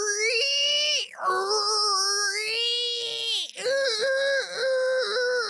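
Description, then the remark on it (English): A voice mimics the ringing noise a faulty Whirlpool dryer makes when turned on: a loud, steady, high-pitched whine held for several seconds, breaking twice for quick breaths, its pitch wobbling slightly throughout. “I'd turn my dryer on and it would go.”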